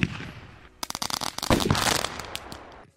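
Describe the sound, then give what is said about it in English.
A rapid string of firecrackers pops and crackles, dozens of sharp bursts overlapping into a loud, dense volley for about two seconds before cutting off abruptly. “Maybe we should put a big old round of applause or a big celebratory noise, some firecrackers going off.”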